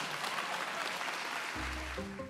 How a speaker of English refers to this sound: Please give one more round of applause to Claire G. Coleman.